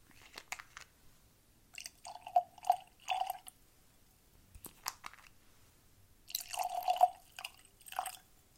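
Beer poured into tasting glasses in two separate bursts, a gurgling glug with bubbly fizz, separated by quiet pauses and light clinks; no one speaks.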